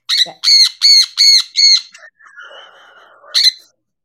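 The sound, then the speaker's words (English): Loud bird squawks: five harsh, evenly spaced calls in quick succession, then softer overlapping chatter and a final squawk, with no one talking. “Well, it's interesting how birds are. When they talk like what we would describe as talking over each other.”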